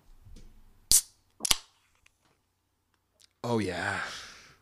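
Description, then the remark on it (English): A beer can cracks open with a sharp pop, followed by a second quick snap, then a pause and a long, satisfied exhaled sigh. “Nothing more refreshing than a... insert beer here.”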